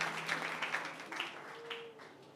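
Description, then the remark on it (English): A crowd claps together in a steady, dense patter of many hands, congratulating a 57-year-old woman on her education certificate, moderately loud and sustained for a couple of seconds, with a faint tonal hum underneath. “So we congratulate her. Everybody clap for Mama.”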